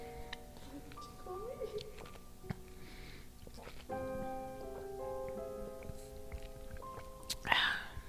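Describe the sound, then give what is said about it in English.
A single wet slurping sip of coffee near the end, brief and fairly loud, following several seconds of low hiss with soft sustained tones in the background. “That was a good sip.”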